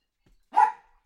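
A single sharp bark from a little white dog rings out, short and fairly loud, with silence before and after it and no voices.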